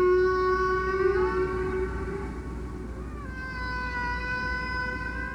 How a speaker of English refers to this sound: Biologist Roger Payne recorded the haunting whale songs with his collaborators more than 50 years ago. The album became the most popular nature recording in history.